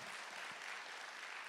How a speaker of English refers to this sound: What an awesome last Sunday day. Last Sunday, can we get a huge round of applause for Block of Blessing 2018?